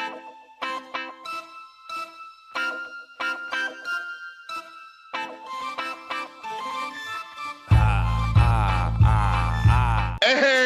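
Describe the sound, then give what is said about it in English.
A melodic phone ringtone chimes in short repeating bursts for several seconds, then gives way to a louder, buzzy stretch with warbling tones as the call seems to connect. No one speaks. “Let's get the king on the phone, man. Let's buzz him.”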